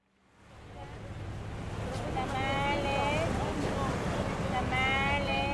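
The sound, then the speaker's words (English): Steady wash of Pacific Ocean water lapping against a harbour breakwater at the port of Lima, Peru, where anchored vessels fill the harbour, fading in and then holding a constant rushing level, with faint wavering calls drifting over it. “I'm looking out now at the Pacific Ocean. It's lapping against the breakwater I'm standing on.”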